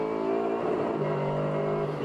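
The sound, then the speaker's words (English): Loud, high-pitched engines of an Acura NSX and a Lexus RC F race car, battling for 5th and 6th place in the GT Daytona class, roar past at speed on a circuit, their tones shifting in pitch as they sweep by in a continuous blast of sound. “And that is the battle between the NSX Acura and the RCF Lexus for 5th and 6th in GT Daytona.”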